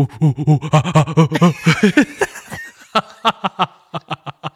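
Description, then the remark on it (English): A person imitates a gibbon call: a fast run of rhythmic voiced hoots that climb in pitch and grow louder, then break into a series of short, sharp staccato bursts. “That's a monkey. It's a gibbon.”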